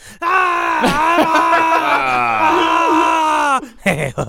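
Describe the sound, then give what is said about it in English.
A voice mimics a scream of pain as a joking impression of someone in pain: one long, loud, wavering cry held for about three and a half seconds, breaking off into a few short breathy gasps. “Just a bunch of screams.”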